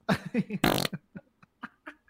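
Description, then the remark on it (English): A loud cartoonish fart sound effect from a soundboard button: a few quick rubbery blasts build into a big raspy burst, then trail off into small, fainter sputters and pops. “That would be a good time to hit one of those fart buttons, probably.”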